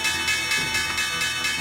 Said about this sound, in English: you can hear those opening bells and take a look at the NASDAQ and the New York Stock Exchange